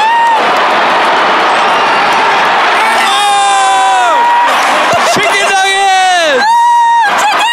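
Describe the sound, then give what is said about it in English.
A loud arena crowd at a Knicks basketball game roars and cheers as free throws are missed, then breaks into rising high-pitched screams and whoops that swell in repeated bursts, filling the space with dense, excited noise. “Everyone's erupting and Everybody's screaming amped.”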